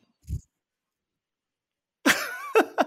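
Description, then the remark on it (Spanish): A short muffled cough, then after a pause a harsh, loud cough followed by two quicker, sharper coughs from a speaker who has a cough. Nobody speaks. “Sí, estoy con la tos, no me pidan más.”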